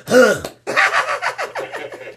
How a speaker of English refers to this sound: Look, the producer, he did the cough.